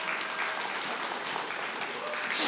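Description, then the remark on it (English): A crowd claps steadily, a dense wash of many hands applauding with no single beat standing out, swelling slightly louder near the end. “These are things to celebrate and things God has provided for us, so we can clap there too.”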